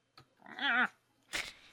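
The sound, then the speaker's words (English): A single drawn-out cat meow with a wavering, tonal quality, moderately loud, followed after a brief pause by a short noisy burst. No one speaks. “Cat, would you please shut up?”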